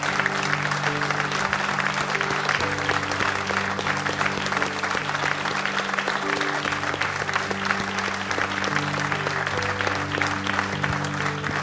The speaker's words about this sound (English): And with that, I want the moms to stand up, and let's really give them a hand clap for what they've done. So moms, stand up.